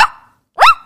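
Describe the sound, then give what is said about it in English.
A person imitates a dog barking: two short, sharp woof sounds, the second louder with a rising pitch, delivered loud with a brief silence between them. “Can you do some animal voices right now?”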